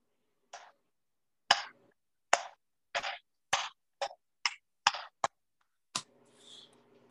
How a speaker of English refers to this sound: No, that's not me inserting Valentine's Day cheeks clapping. That's me giving a slow clap to that rant that we just heard.